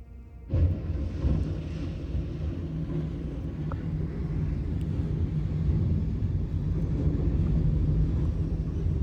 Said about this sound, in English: You're about to see what happens when a locomotive barrels into a tractor trailer.